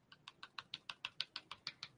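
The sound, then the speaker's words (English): Steady typing on a computer keyboard, a quick even run of about a dozen crisp key clicks, fairly quiet, with no voices. “Well, I'm having difficulty with my keyboard.”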